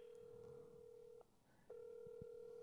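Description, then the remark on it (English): A phone call is placed back on speakerphone: a steady electronic ringback tone sounds, pauses briefly, then starts again, fairly loud and clear with no one talking. “Yeah, so call back. Just Yeah, put them on speaker.”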